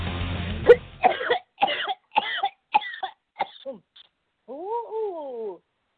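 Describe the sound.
A fit of harsh, raspy coughing after smoking: about seven rough coughs in a steady rhythm, tapering off, followed by a brief wavering voiced groan.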